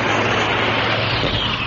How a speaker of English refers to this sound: Blimey, that wasn't one of ours. The searchlights are looking for the plane.